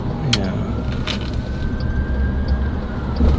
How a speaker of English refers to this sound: No one else pulls over for the ambulance. No, it's and I'm going like, what? Aren't you supposed to pull over when an ambulance comes flying in like that?